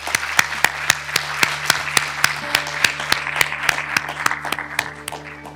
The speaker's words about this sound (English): And I think we will thank them with a round of applause. Thank you very much.